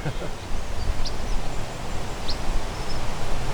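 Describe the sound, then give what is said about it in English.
Two short, high-pitched chip notes from a tree sparrow ring out about a second apart, thin and sharp against a steady wash of rustling background noise. “It's got that high-pitched chip-chip.”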